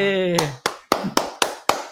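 A short spoken phrase gives way to five sharp, evenly spaced hand claps, each a crisp loud smack with a quick decay, like a small welcoming round of applause.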